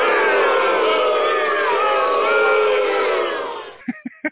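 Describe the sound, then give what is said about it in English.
A crowd-booing sound effect: a loud crowd boos steadily for nearly four seconds, a dense wall of many voices, then it cuts off abruptly, leaving a few brief, sharp sounds. “I don't have any birthday music, so everybody in the crowd can boo me.”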